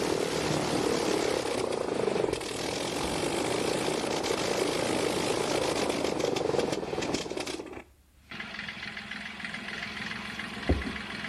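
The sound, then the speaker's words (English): A Blackburn rotary-engine aeroplane, in a start-up sequence and flight, roars steadily with a dense, buzzing drone. The noise cuts out abruptly for a moment, then resumes more quietly, with a single dull thump near the end. “it'll show a start-up sequence and a flight of the Blackburn, which is a rotary-powered aeroplane.”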